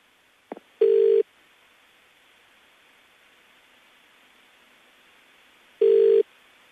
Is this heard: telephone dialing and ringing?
yes